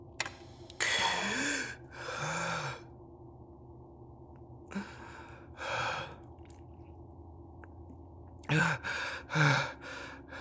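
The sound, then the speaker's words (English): Sharp gasp on waking from low oxygen, followed by heavy, rasping breaths drawn in and out through an oxygen mask released from overhead, three pairs of inhale-exhale bursts spaced a few seconds apart over a low steady hiss, fairly loud. “Please place the mask over your mouth and nose and begin breathing normally.”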